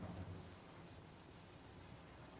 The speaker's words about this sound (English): Okay, I'm putting these windshield wipers back on here. All right. Wow. Okay. Look at that. It's really, I mean, I love the rain. It's quite beautiful to me.